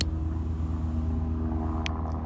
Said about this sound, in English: Well, let's wait for this freaking helicopter to fly by. No, but I'll wait. Wind. Helicopters. It's the wind. It's the helicopters.